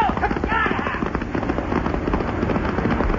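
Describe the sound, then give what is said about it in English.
A horse's hooves gallop away in a rapid, steady, loud clatter, fleeing a flood coming down an arroyo, continuing without a break over a rough, noisy background, with a brief higher-pitched cry near the start. “Come on, horse. Let's move fast. Get out of here.”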